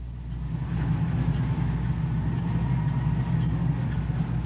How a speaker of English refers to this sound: Oh, hear that? There's a lot of action down there in Times Square tonight. You are hearing Times Square in action.